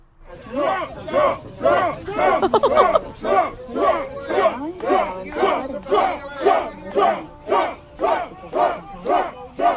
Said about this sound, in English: All right, you got like 50 to 75 voters there chanting his name, holding signs. It's 100 freaking degrees there, and they are moved to stand together to cheer on the president.